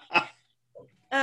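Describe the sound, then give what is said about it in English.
A guard dog barks twice in the background with a short gap between, a sharp bark followed by a softer, more tonal one, moderately loud, with no talking. “Forgive me, my dog is a guard dog, so he will be part of this not perfectly produced podcast as a background sound sometimes.”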